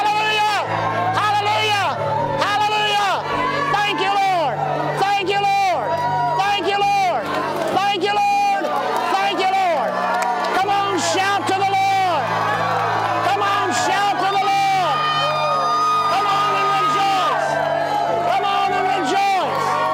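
A loud, dense crowd of church audience voices shouting and whooping together without pause, with feet stomping in the background, the clamor steady throughout, as worshippers stomp and shout during a church service.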